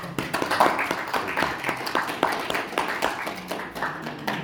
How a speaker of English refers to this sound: Thank you for being so well behaved. And I think we should just give you two a little round of applause.